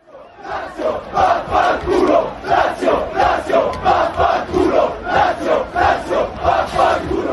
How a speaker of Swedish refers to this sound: Och från den öppna bussen ledde Saniolo med mikrofon också Roma-fansen i en ramsa mot ärkerivalen Lazio.